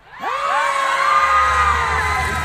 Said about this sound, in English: Scary face, hit us! Oh, this caused everyone to scream!